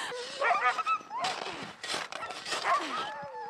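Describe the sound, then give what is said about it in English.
A dog lets out a string of short barks and high, wavering whimpers in uneven bursts, with brief scuffling noise between them. “That's one dog.”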